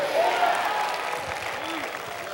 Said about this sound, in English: Clap your hand and shout hallelujah.